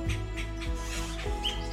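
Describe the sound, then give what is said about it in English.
A few short, high bird chirps and a brief whistled note rise over a steady low hum, fairly faint, with no one talking. “Birds have some amazing, amazing songs and calls.”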